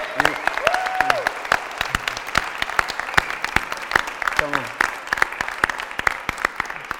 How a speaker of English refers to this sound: I want to honor them. True Life Church, can we give this couple and Bromham Church a round of applause for serving and laying their lives?